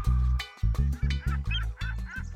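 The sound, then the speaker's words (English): A swan honks loudly as it arrives at a party of birds, a quick run of about seven nasal, brassy honks in uneven rhythm, with no talking over them. “Our friends from the Amazon have just flown in. Hi, Mr. Toucan. Hello, Mrs. Swan.”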